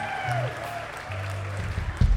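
A crowd at a live music show claps for a band that performed that evening, a dense crackle of applause with a sustained electric hum and whining tones layered over it, swelling louder in the final moments.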